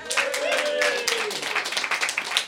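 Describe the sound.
A crowd claps steadily in a dense, rapid patter, with a few voices whooping and cheering over the applause at the start, loud throughout.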